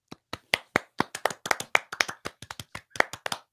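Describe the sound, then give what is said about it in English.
A brief, small round of applause: sharp hand claps in a quick, slightly uneven patter, like a few people clapping together for a few seconds, with no talking. “Give a round of applause for all of that.”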